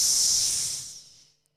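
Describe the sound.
A person hisses like a slithery snake, one long breathy hiss that starts strong and gradually fades away over about a second and a half, with no talking.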